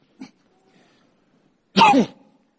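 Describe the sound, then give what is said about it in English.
A person fakes a loud sneeze, a short breathy burst with a voiced, exaggerated tail, preceded by a faint quick intake of breath. “God bless you, right? Yeah, that was fake.”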